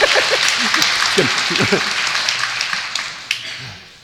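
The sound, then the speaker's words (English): An audience claps together in a dense, steady burst of applause that gradually thins and fades over a few seconds, with scattered voices calling out underneath. “So either discipline somebody out or everybody clap.”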